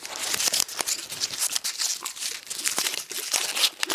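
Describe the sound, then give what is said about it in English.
Continuous crinkling and crackling of festive wrapping paper being scrunched and handled, with irregular sharp rustles and brief crunchy bursts throughout, no voices. “Is that a festive bit of wrapping paper you got there?”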